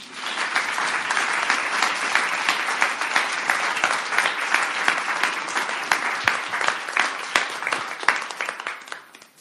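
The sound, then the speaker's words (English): A crowd applauds steadily for several seconds, a dense wash of many hands clapping at an even, strong level before tapering slightly at the end. No one speaks over it. “Can we clap again?”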